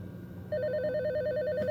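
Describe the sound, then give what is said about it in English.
An electronic telephone ring starts abruptly about halfway through, a rapid warbling trill that alternates between two pitches, fairly loud over a low background hum. “The phone is ringing.”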